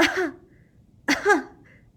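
Two theatrical, deliberate fake coughs from a girl pretending to be ill, each a short voiced burst, separated by about a second of quiet. No one speaks.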